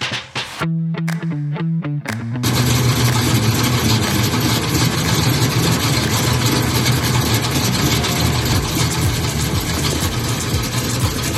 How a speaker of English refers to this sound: Those car sounds, courtesy of Evan Osborne. That was not his three-cylinder diesel tractor. That was his Chevy Monza, by the way.